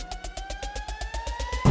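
In a future bass song, a steady, slowly rising air-raid-style siren tone glides upward over a fast, pulsing electronic beat, loud and up front, with no voices.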